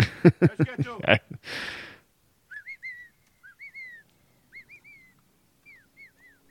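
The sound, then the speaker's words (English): A brief burst of speech gives way to a string of short, warbling whistled chirps that a person makes as a signal, each sliding up and down in pitch, repeated irregularly at moderate volume. “I have to make this weird fucking whistle noise, or we'll just fucking fire at anybody walking out of the groves here.”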